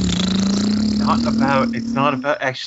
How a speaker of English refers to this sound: You know he can just follow the sound of the motorcycle, right?